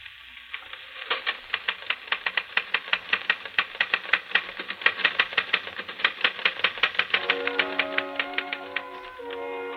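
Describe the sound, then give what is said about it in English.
Rapid, irregular typewriter keystrokes clack steadily for several seconds, played back from a special record on a small portable phonograph with a repeating attachment in a hotel room, with a faint tonal hum entering near the end; no one speaks. “Yes, Charles, you're busy typing on a phonograph record.”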